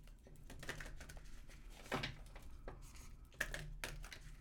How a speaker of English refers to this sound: keep your eyes closed while I shuffle the cards